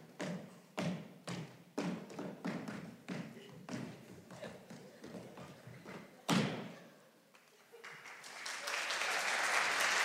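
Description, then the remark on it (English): An audience claps and stomps in a loose, rhythmic pattern of sharp thuds, pauses briefly, then breaks into a dense, steady wash of applause that builds toward the end. “You don't need to applaud me.”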